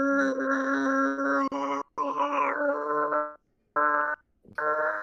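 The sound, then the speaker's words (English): A voice imitates the scream of a Star Wars TIE Fighter with a loud, strained, harmonic wail held for nearly two seconds. It bends upward briefly, then returns in shorter bursts separated by pauses. “It's see the scream from TIE Fighters, like, oh, because the bad guys are coming.”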